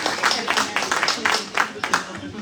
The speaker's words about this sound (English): Yeah, there we go. Another round of applause. There we go.